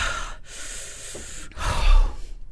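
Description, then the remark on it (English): Heavy breathing from a person after chugging 46 ounces of juice: three broad, breathy bursts in quick succession, the last one a deep, forceful exhale with no talking. “So I feel like I'm breathing a little heavy. You are breathing like heavy.”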